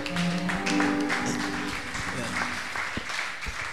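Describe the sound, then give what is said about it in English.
An audience applauds together as a clap offering to God after prayer, a dense, continuous wash of many hands clapping, with sustained musical tones and some voices audible beneath it. “Shall we take our seats in prayer and a clap offering to God?”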